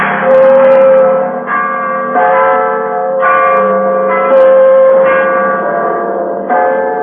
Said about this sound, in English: Bells, and presently up the hillside, little dark knots of men began to appear.